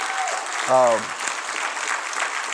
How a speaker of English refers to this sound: Give her a hand clap. We appreciate what she does.